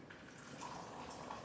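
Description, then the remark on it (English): Water pours steadily into a glass as someone gets water for the others, a continuous splashing trickle with faint rising ringing tones as it fills, and no voices over it. “If you hear that water sound, just know that is Henry getting us some water.”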